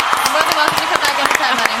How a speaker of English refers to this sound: Oh, come on. We got to give her the big applause.